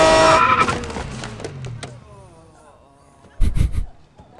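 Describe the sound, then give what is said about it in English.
A man drives up in a sports car: its engine roars, then fades and settles over a couple of seconds, followed by a short cluster of sharp, loud thumps and crunches near the end. “He drives up in his really nice sports car.”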